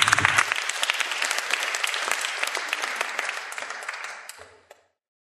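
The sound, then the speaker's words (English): A round of applause from a small group, dense overlapping claps at steady loudness for about four seconds, then thinning out and fading with a last stray clap. “Give him a round of applause, folks.”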